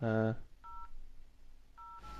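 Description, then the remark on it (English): Telephone dialing tones: two short, clear dual-pitched beeps about a second apart, following a brief loud buzzy burst at the start, with faint background hiss between. “We've got a surprise caller on the YoGscast.”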